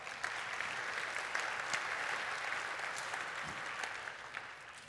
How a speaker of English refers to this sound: Aren't we blessed to be at a church where Scripture is memorized like that? Yes, go ahead. You may applaud that, absolutely.